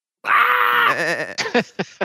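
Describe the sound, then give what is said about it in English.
An artificial voice from a 3D-printed voice box with an artificial larynx, built on the scanned vocal tract of Nezimun, gives a drawn-out, vowel-like bleat like a sheep's, steady at first and then wavering, followed by a few short, choppy vocal bursts, fairly loud. “Yeah, voice has been reproduced as a vowel-like sound that is reminiscent of a sheep's bleat.”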